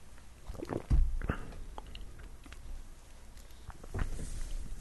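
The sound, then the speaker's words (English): Someone takes another sip of a beer they are tasting: a soft slurp followed by quiet mouth sounds and swallowing, with a few light clicks and low thumps and no talking. “Let me talk about that a little bit and take another sip here.”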